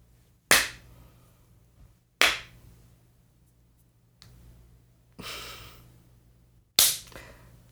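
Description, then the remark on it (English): A few sharp hand claps, made as sync marks for editing a recording, ring out one at a time, spaced a second or two apart, with a soft breathy exhale between them and no talking. “Ear for that clap.”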